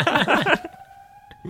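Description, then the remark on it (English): A high school fire alarm, set off by someone pulling the alarm, goes off: a loud, harsh clanging burst, then a steady, piercing electronic tone that holds on, with a brief click near the end. “She just pulled a high school fire alarm pole.”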